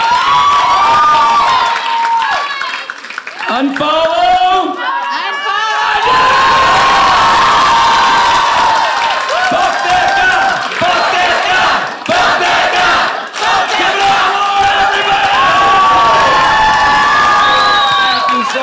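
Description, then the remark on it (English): A loud, sustained crowd of friends cheering with whoops and high shouts layered over each other, rising and falling in waves for nearly twenty seconds without any clear speech. “your friends are cheering me on.”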